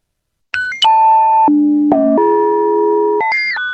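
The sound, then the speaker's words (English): Three pitch-shifted temple bells, like small singing bowls, processed with an elastic pitch effect, ring in a sustained, shimmering chain of tones that leaps from high down to low and back up to high, with soft strikes blurred into the long ringing and no voices. “This is the three temple bells. Right, like the three little singing bowls, and I just did that elastic pitch thing and threw it all over the place, and it sounds so cool.”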